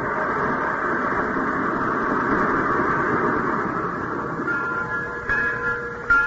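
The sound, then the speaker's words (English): An old train locomotive with cobwebs on it rumbles steadily, a dense continuous roar of machinery and rolling wheels with a faint high whine near the end and no voices. “First train I ever saw with cobwebs on the locomotive.”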